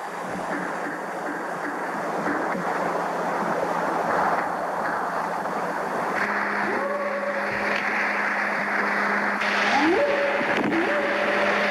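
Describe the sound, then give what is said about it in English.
A noisy, hissing old 1971 field recording with a steady low hum, a few faint knocks, and rising whooping calls that swoop upward near the end. “Definitely hear that banging. Yeah, there's knocking.”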